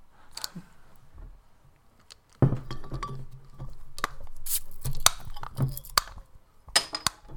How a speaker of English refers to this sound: What's going on there? Yeah, it was a can. Sounded like you were punching something.